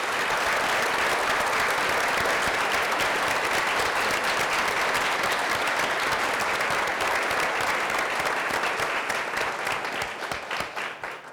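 A large audience claps steadily for the people who help bring services across the city, in a dense, loud wash of applause with no voices, holding strong for about ten seconds before tapering off at the end.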